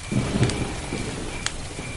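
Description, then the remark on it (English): Low rolling thunderclaps, coming from different sides, rumble beneath a steady hiss like rain, while a thin, continuous high chirring of crickets runs through the background, with occasional hoots and chirrups from different places and one brief sharp crackle near the end. “The thunderclaps happen from different sides, the occasional hoot and chirrups over and above the background crickets there come from different places.”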